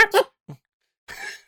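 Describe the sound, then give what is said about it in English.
A voice imitates a small dog's high yappy barks: two quick sharp yips, a brief low grunt, then a longer whiny yelp, fairly loud with pauses between. “I imagine like a little chihuahua barking at a bunch of enemies and then they all turn and look.”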